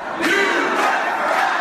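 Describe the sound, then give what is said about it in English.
A loud, dense town hall crowd in Iowa jeers and shouts angrily together at Senator Joni as she leaves, a sustained roar of many raised voices with no pauses, overwhelming throughout. “The jeers followed her all the way to the parking lot and into a car.”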